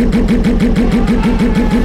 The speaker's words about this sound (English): As he fights to hold on to this lead, Anakin's pod is overtaken by the hulking shape of Sebulba's racer, its violent engine stutter boxing his eardrums.